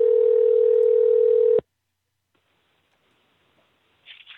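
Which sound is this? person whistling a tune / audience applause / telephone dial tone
telephone dial tone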